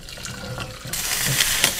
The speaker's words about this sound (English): So it's a little bit hot. I use great copper pots, and I'm going to literally take this, and I'm going to strain it here.